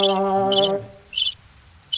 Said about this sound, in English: Crickets. I got no crickets. Did you turn me down? I don't got no nothing. Oh, I got crickets.